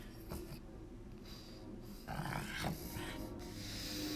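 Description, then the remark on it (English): A female dog breathes heavily and snorts, with thick, wet huffs repeating in an uneven rhythm, growing louder and rougher toward the middle and end. “Here she come with this thick ass breathing.”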